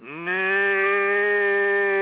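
A single long, steady cow moo rings out loud, its low droning tone held evenly for about two seconds with no other sounds around it.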